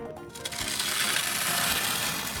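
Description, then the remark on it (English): Gritty scraping and crunching of glass shards being used to try to clean up a mess on the floor: a continuous rough, brittle grinding with sharp high-pitched texture, fairly loud, lasting a couple of seconds with no talking. “Oh, let's try cleaning it up with these shards of glass that I have.”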